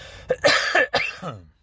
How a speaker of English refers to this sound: When I'm podcasting from, like, a studio, I have a cough button that I could press and then go and you won't hear it. But not now sitting in the driver's seat of my car on the American highway.